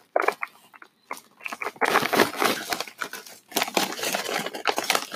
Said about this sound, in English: But, I think they're good. They're like, you know, they're kettle chips. They're like got a nice crunch to them usually.